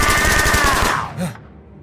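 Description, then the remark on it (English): A rapid burst of automatic gunfire rattles for about a second, loud and dense with a ringing whine over it, then breaks off into a short low thud and fades. “Don't come any closer or we'll shoot!”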